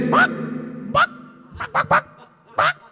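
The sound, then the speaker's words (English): A person squawks like an agitated chicken, letting out five loud, harsh clucking cries in an uneven burst, with a low hum underneath. “You're an angry chicken. You're angry.”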